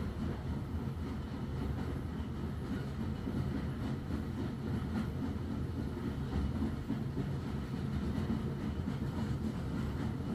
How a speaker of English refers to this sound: You step aboard, and the train begins to huff, chuff, and whoosh. Just like that, you start to move slowly away from the station.